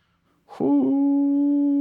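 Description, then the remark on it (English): A dog gives a short rough yelp that slides straight into a long, steady, high whine, loud, holding one pitch to the end with no other sounds around it. “Doggy.”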